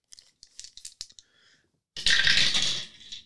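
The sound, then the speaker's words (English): Three dice clicking together in a hand, then a loud, dense rattle as they tumble across a hard surface for about a second before settling on a 1, a 3 and a 5. No voices. “It gives you an extra dice.”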